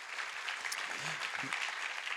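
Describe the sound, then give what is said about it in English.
An audience applauds God, breaking into steady, dense applause, many hands clapping at once in a continuous wash, with a brief low murmur of a voice or two rising beneath it. “So please applaud God.”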